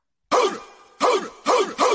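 Four loud dog barks in an uneven rhythm, each a sharp, full-bodied woof with a short tail. No talking.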